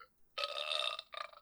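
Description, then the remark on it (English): A loud, drawn-out burp sound effect that rumbles for about half a second, followed by a shorter, wetter second burp right after it; no voices alongside. “Uniquely timed ill sound effect.”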